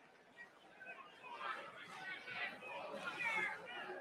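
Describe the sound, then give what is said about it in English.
A large crowd at a Ring of Honor professional wrestling match, with Jay and Mark Briscoe facing Harwood and Wheeler, murmurs and chatters in a steady, dense babble that swells slightly louder midway and holds there, with no single voice standing out. “You start that murmur. That's why you got to be here.”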